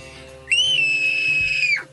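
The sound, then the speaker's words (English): A single loud, piercing scream held at a steady high pitch for just over a second, then cutting off abruptly; a person screams on request as an audition. “That was a blood-curdling scream.”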